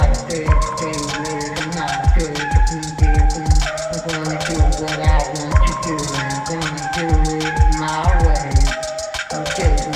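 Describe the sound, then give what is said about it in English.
A full band plays a steady, driving song with punchy kick drum, cymbals and layered guitars; any vocals sit low and buried in the mix, hard to pick out. “I want to hear the vocals a little bit louder. Just that's a the way he wants them buried.”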